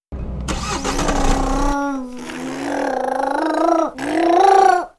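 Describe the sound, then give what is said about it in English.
A voice imitates a car engine starting and revving, a loud, buzzing, steady drone that briefly cuts out, then surges back up for a final rev. “remember, Ashi, you said that if you had to go up a mountain, you would like a vehicle with a very powerful engine.”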